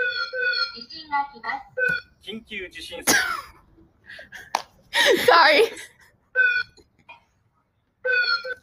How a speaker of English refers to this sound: can we listen to the warning sirens now? Yeah, first up is Japan.